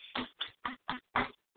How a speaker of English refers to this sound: Oh, shit. I woke up my dogs. Damn it.